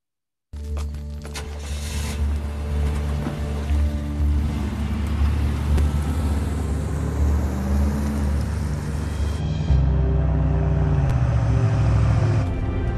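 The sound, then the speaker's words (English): A steady, low engine rumble heard from inside a moving car, droning continuously with road noise and shifting slightly in tone partway through, with no one speaking. “They're in the car.”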